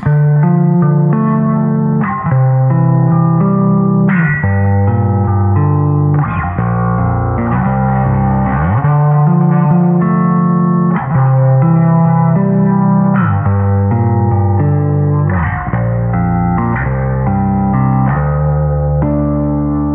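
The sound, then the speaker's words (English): An instrument plays a slow progression of sustained verse chords, shifting about every two seconds, steady and loud with a shimmering, effects-heavy tone and no voices. “Yeah, those are the chords for the verse, and I remember hearing those and thinking, like, this is also a spooky song, isn't it?”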